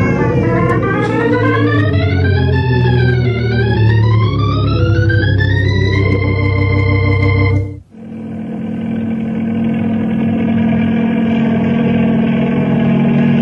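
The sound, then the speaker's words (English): A helicopter engine roars, its whining pitch rising and falling, then after a brief dip it settles into a steady, heavy drone as it flies toward a cabin during a fire. No voices are heard. “We'll try to get to that cabin by copter.”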